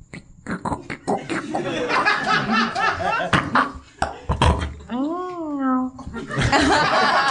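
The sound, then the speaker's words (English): A person vocally imitates picking a lock: a string of mouthy clicks and squeaky sounds, then a wavering hum that swoops up and down, mixed with chuckling. “What's him picking the lock sound like?”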